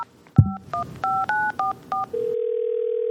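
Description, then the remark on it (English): A handset clunk, then six quick two-tone telephone keypad beeps in an uneven rhythm as someone dials the Thank You Phone line, followed by a steady humming line tone. Clear and fairly loud, with no voices. “I'm going to call Thank You Phone just to kind of cover this for me.”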